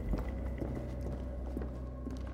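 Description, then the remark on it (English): Slow, evenly spaced footsteps of one person, who has just pushed through a door, tap out a steady rhythm over a low background hum, each step fairly soft and gradually fading a little as they move away. “We waited, and after a few seconds, I heard one person get up and push through a door, and then footsteps slowly receding.”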